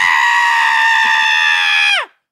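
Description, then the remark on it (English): A person imitates a blood-curdling man's scream: one loud, sustained, strained shriek held for about two seconds, then cut off abruptly with a downward drop in pitch. “There's a man that screams like a blood-curdling scream.”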